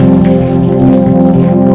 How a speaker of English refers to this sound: Then why don't you put your hands together for Jesus? Oh, are you clapping? Clap with enthusiasm. Clap with excitement. Clap with gratitude in your heart for Jesus. Hallelujah.